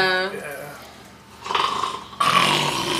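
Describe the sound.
A person imitates snoring: a short voiced tone, then two rough, raspy breaths that grow louder and grind like exaggerated snores, with no actual words spoken.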